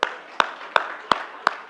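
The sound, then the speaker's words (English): An audience gives five sharp hand claps in a steady, evenly spaced rhythm, each a crisp bright smack over a faint background hiss, with no one speaking. “Everyone clap for me.”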